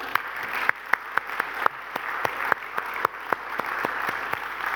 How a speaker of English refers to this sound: Why don't we give all of our mums a round of applause this morning?